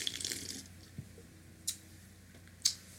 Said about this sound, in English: Polar seltzer's the way to go. I got raspberry. You have the ruby grape. I have ruby grape, yeah. Let's give them a sip. Yeah. Let's get the sip noise in there.